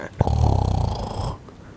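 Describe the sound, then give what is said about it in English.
A loud, rasping snore-like noise made while vaping, blown right into the microphone, a single rattling inhale lasting about a second before cutting off abruptly. “Did you just fucking snore into the mic?”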